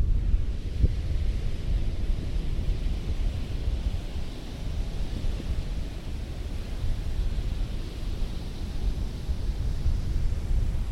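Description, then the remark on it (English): Steady, rushing ocean surf at a beach mixed with gusty wind buffeting the microphone, a constant loud roar with heavy low rumble and no distinct breaks or voices. “Do you ever like just like stare into a wave and like really look at like the frothiness and like the sea foam and you're just like, we're the sea foam.”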